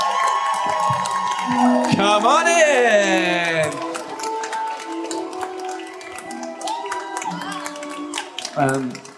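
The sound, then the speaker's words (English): An audience cheers and applauds as Katie Leung is welcomed to the stage, with steady clapping throughout and a rising whoop of voices early on, while a person calls out over the noise. “Cheering now and welcome to the stage, Katie Leung!”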